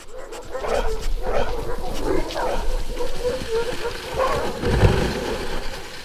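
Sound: sled dogs barking excitedly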